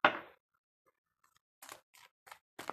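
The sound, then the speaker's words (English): Tarot cards being shuffled: a brief papery swish, a short pause, then four quick, crisp riffling bursts at a steady rhythm, soft and with no talking. “So these cards are not coming out. Let me try shuffling a little bit more.”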